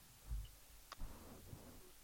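A sharp, quiet mouse click sounds, followed moments later by a softer second click, with a faint low thump earlier and a muted background otherwise.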